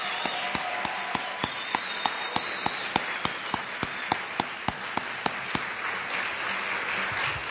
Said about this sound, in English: Let's together send our best wishes to Harley for a speedy recovery. Big round of applause for Harley Fetterman.